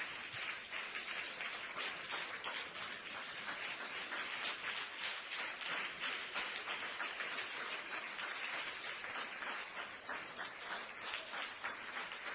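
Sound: audience clapping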